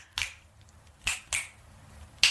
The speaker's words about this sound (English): That is delicious in my ears. Do you know what I'm snapping and clapping?